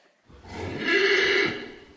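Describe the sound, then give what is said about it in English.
A single horse whinnies loudly, a shrill, quavering neigh that swells for about a second before tapering off into a low, breathy finish. “That's right, we're talking about horses.”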